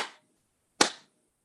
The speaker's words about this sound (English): Okay, there's three claps in a row. So that's not bad for keeping the beat.